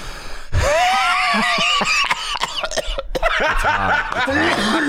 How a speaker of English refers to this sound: You gotta watch out for that cough. It hits the back of your throat.